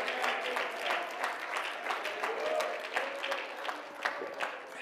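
An audience at a church service claps their hands together in a steady, rhythmic beat to praise God, a dense wash of many hands with faint voices murmuring underneath.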